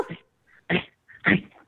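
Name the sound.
dog vocalizing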